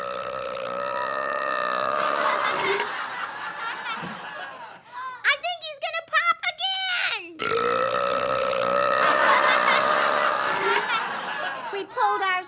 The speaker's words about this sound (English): Off of the floor, having been blown back by the bodacious burp. And as the raspberry vapors from the monkey belch cleared, I couldn't believe my eyes.